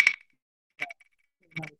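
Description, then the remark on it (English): A spinning wheel clicks as it turns, giving three separate sharp, metallic clinks spaced evenly about a second apart, each with a bright ringing edge, and no other sound between them. “Click, click, clink, clack. See when spin goes around.”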